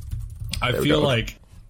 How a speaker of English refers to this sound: It's just you typing multiple times over and over again.